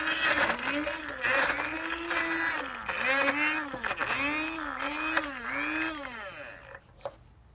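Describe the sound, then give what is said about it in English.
A blender grinds garbanzo beans for an appetizer with a loud, strained whir that rises and dips in repeated pulses as the motor labors, then cuts off, leaving near silence at the end. “All right, we've ground up the garbanzo beans, and to this we add a tiny little bit of jalapeno, but be careful with this because it's only to add some spice and not really make it hot.”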